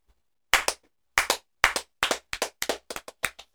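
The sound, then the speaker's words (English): A slow clap given in honour of Jam Patterson: sharp, fairly loud hand claps, each slightly doubled, starting spaced apart and gradually quickening over a few seconds, with no voices. “We're going to give him a slow clap.”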